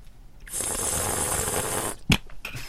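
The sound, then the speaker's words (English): A long, airy slurp of wine drawn through the lips to aerate it lasts over a second, fairly loud, ending abruptly and followed by a sharp click and a few soft mouth sounds. “And then you want to do that slurpy thing.”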